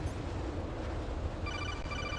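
A low, steady rumble fills the background, then a phone in a video game starts ringing partway through with a bright, trilling electronic tone. No one speaks.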